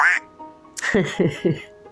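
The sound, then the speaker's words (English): A duck quacks three times in quick succession, fairly loud, with each nasal quack evenly spaced after a brief rustle at the start. “There's a word from our sponsor, the duck.”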